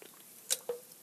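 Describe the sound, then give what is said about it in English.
A quick sip of Monster energy drink right at the mic: one short, sharp slurp followed by a soft swallow, fairly quiet, with no talking. “Let me take a sip of Monster before we say goodbye because it's delicious.”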